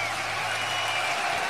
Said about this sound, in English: That's the applause we're going to be hearing. Oh, yeah. Hear that applause?